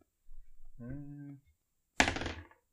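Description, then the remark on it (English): A short voiced murmur is followed by a d20 die being rolled for a luck check in a tabletop game: one sharp clack as it lands, then a quick rattling tumble that dies away within half a second. “Just roll d20.”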